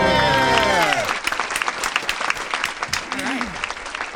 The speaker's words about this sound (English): Real applause and canned applause. And fake applause. You get it all. All manner of applause for you.